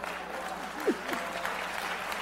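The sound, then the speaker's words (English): A crowd applauds steadily, a dense wash of many hands clapping at moderate volume, with faint voices surfacing briefly beneath it. “Clap.”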